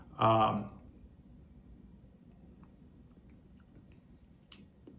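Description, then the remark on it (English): A short slurping sip of 115-proof bourbon right at the start, followed by near-silence with soft mouth noises and a faint click toward the end. “Now, when you take a sip, it's not sweet.”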